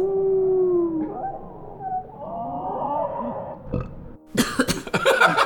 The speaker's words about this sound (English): And it sounds like you burping and saying, excuse me.